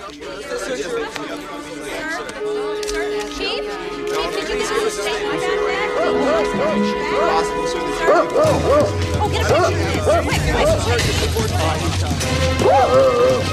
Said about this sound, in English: So, and the last shot you see of him is running through the fields with bloodhounds hot on his tail and do-do-do-do-do-do, like.